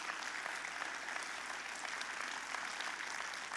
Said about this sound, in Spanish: Den un aplauso a Dios por ellos.